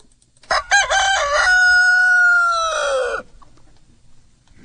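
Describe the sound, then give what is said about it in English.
A rooster crows once, loud: a few choppy opening notes followed by a long, steady, drawn-out cry that breaks off after about three seconds, leaving a quiet background. “Right, it was a rooster.”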